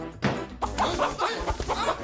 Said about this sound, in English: It's random. It's a chicken in this.